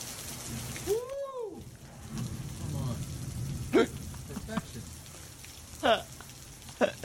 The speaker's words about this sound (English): Guys, look. This is a beauty. This is totally genuine. I love it. I'm not even pretending. It's pouring.